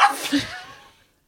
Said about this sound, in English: Okay, I'm going to cough. Blow. Cough!